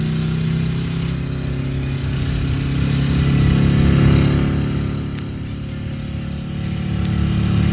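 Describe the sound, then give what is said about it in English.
A motorcycle engine drones steadily, swelling louder as it accelerates through the middle, then easing slightly before building again. No one speaks. “Fortunately, our hog was fast, and we had a full tank of gas. As I accelerated to 105,”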